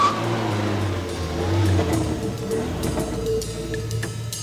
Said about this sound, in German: hörten Tim und seine Freunde, wie ein Wagen nahte und vor der Baracke hielt